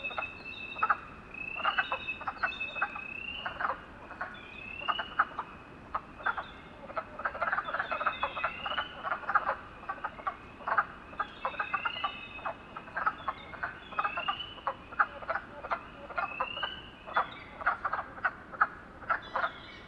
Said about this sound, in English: What's more, several blue jays approach from the surrounding woods, their musical notes mixing nicely with the chorus. I close my eyes and just take it all in. The lovely sounds of the frogs, birds, and the wind.